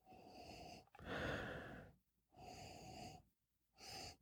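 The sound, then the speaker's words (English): Several long nasal sniffs as someone noses a glass of 120-proof, non-chill-filtered bourbon whiskey, coming in four breathy bursts separated by short pauses, with no talking. “This is a great podcast and a great live video to see somebody sniff whiskey, that's for sure.”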